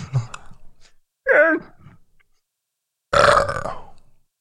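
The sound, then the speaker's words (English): A loud burp rumbles out, preceded by a shorter croaky belch and a brief throaty noise, with short pauses between the bursts. The final burp is the longest and strongest. “I want to isolate that one burp and then turn the volume all the way up on just it.”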